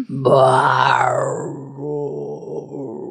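A long, drawn-out burp, loud and throaty, with a low wavering pitch that swells early on and then trails off in a rougher, pulsing tail; no talking.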